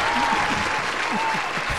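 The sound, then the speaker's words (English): A steady wash of audience applause for the producer of the radio show Live Chat Radio, dense and fairly loud throughout, with no pauses, and faint voices mixed in underneath the clapping. “Round of applause, ladies and gentlemen, for our fantastic producer.”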